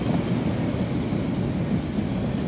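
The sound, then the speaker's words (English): A steam train rolls along steel tracks through woods, sparks flying through the dry air, giving off a steady, heavy low rumble that stays constant in loudness throughout, with no distinct chuffs or clacks standing out and no voices. “A machine of fire and steam invades these lands. Steel wheels on steel tracks, sparks flying through the dry air.”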